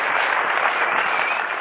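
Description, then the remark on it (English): An audience gathered to discuss the intelligent use of drugs applauds itself steadily: a dense, even wash of many hands clapping at once, fairly loud and sustained for the whole moment with no voices over it. “I think you should applaud yourself for being here.”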